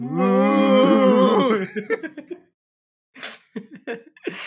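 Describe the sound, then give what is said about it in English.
A loud, drawn-out cow moo bellows for about a second and a half, then gives way to short, choppy vocal bursts separated by a brief pause. “Mad cow.”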